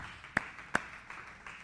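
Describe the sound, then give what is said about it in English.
An audience gives the Lord a hand clap of praise: two sharp, prominent claps ring out a moment apart, followed by softer ones, over a steady wash of fainter hand clapping. No one speaks. “Why don't you give the Lord a hand clap of praise today?”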